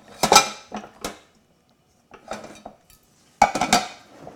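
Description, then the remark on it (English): Metal pots and pans clatter and clank as someone digs through them looking for a little pot while cooking, in three bursts of jostling separated by short pauses, moderately loud with no talking. “This is the most pots and pans I've seen in a while.”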